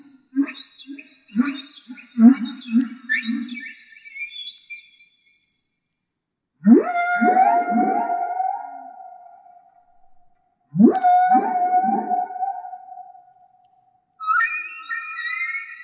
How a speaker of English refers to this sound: we actually have a sample from that album that was sent on the Voyager. It was … …. Here's what it sounds like.